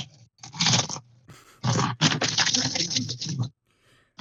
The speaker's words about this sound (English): Would you mind crunching your chips a little further away from the mic? Because when you crunch some chips directly into the mic, the audio gets really loud.